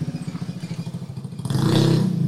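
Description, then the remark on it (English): A truck engine idles with a lumpy, throbbing rhythm, then is revved up sharply into a louder, sustained roar. No one speaks. “let me rev up the engine. Go ahead. Hit it two times.”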